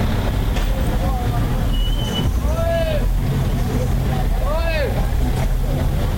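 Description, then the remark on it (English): Dense street noise in Kibera: a constant low rumble of engines, passing vehicles and crowded matatus, rising whining tones of motorbikes revving as they weave between cars, and bicyclists in the traffic, with indistinct voices of crowds walking along the roadsides mixed into the busy background. “Hordes of people walking up and down on the sides of the roads, cramming into already full Matatus. People on motorbikes whizzing in between cars.”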